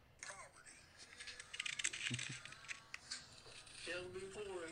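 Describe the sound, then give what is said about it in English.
Crisp, rapid papery riffling of a seated man flipping through a wad of cash ($1,200), steady for a few seconds, with a voice briefly speaking near the start and again at the end. “So he's basically just, so to describe what's happening, he's just sitting there holding a wad of cash, just flipping through it.”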